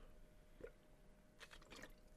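A person takes a quiet sip of water, with a few soft wet slurping and swallowing sounds against a faint background hum.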